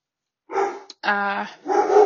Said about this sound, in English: Sorry, my dog's barking.